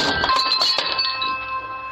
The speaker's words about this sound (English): He places the package down, knocks on the door, and as he walks away, Something smashes through the glass. What the heck was that? It's a dog named Gunner. That's his snout sticking out.